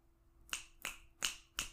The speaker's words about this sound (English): You like it? That was me snap clapping.